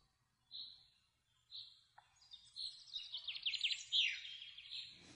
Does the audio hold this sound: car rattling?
no